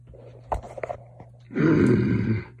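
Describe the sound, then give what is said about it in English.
A man lets out a loud, angry growl lasting about a second, deep and rough with a raspy edge, preceded by a few short grunts and breathy sounds. “He growls as the jade spear begins to whir and glow.”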